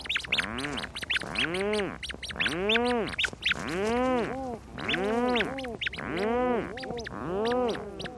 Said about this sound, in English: Rhinoceros auklets are relatives of puffins, medium-sized dark gray duck-like birds that spend their days at sea and then return at night with fish for their single chick, hiding deep in a burrow.